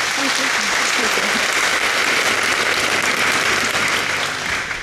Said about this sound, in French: Et j'aimerais que peut-être vous puissiez l'applaudir une fois avant de lui donner la parole.